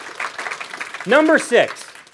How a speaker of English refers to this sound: Someone clapped. I want to clap for you. There you go.